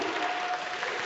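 An audience applauds steadily, a dense wash of many hands clapping at an even, moderate loudness with no voices standing out.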